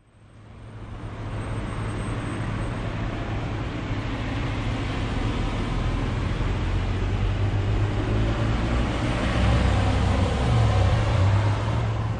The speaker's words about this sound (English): I've come to the wide open space of a shopping mall car park